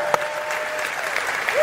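Steady, dense applause from an audience: a continuous wash of many hands clapping at an even, moderate level, with a short high whistle-like tone rising near the end.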